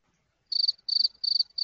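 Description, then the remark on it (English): A cricket chirps in four short, evenly spaced trilling bursts, high-pitched, with a brief thump at the very end. “I was just looking at the cricket.”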